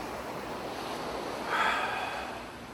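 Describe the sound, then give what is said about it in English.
A single slow, deep, airy inhale swells up mid-way and fades against a soft, steady hiss of background noise with no talking. “And then inhale.”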